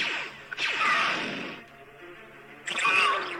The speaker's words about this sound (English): These are fish? These are fish trying to get a bug by spitting water at it. And it's sounds. I didn't know fish could do that.